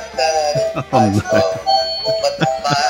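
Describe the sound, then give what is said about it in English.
A bright, tinny Christmas bell jingle plays a short chiming melody, steady ringing tones repeating at a quick, bouncy rhythm, with voice-like sliding notes woven through the music. “The bells get lamer as every year goes by.”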